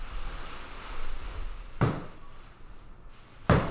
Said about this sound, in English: We may be picking up some cricket with the mic, cause there's one right behind the trash can.